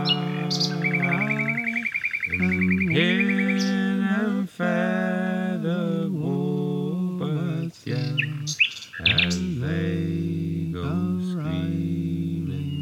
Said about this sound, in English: I guess going back to the Nightingales, you've spoken about their relationship to you personally as kind of a gateway to reconnecting on a much deeper level to the natural world, and specifically to the healing power of nature.